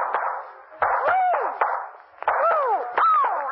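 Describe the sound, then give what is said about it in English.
Several sharp gun pops at a shooting gallery as shots are fired at clay pipes, roughly evenly spaced, each followed by twangy whistling tones over a steady, busy background hum. “Hit the clay pipe 5 times in a row and you get a Cupid dog.”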